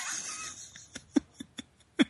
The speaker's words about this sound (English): No, I'm working the slider because I'm coughing like a madman.